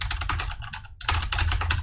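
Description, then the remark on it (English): Rapid, continuous clicking of computer keyboard keys, a dense patter of keystrokes with a brief pause midway, fairly loud, with no voices. “all you hear is just the clicking of the keys and the slurping of the Mocha espresso triple shots.”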